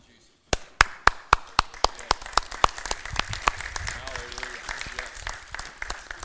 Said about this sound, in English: Thank you for those applause. I appreciate that.